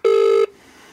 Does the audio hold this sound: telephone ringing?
yes